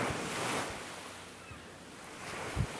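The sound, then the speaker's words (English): Steady ocean surf washes onto the shore at a beach with broad, hissing noise, a wave swelling and breaking, with a gusty wind rumbling against the microphone. “We're hearing those waves crashing on the shore.”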